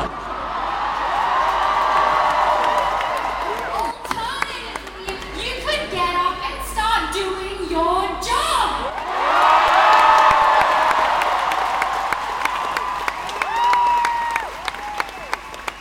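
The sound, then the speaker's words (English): A large protest crowd at Town Hall cheers and applauds, with dense clapping and whoops, easing briefly in the middle before swelling again; scattered voices shout within the noise. “Come further into the crowd, and we've just run into a first-year med student.”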